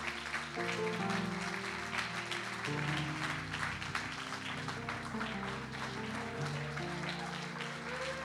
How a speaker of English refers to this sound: Please clap your hands as Bishop comes.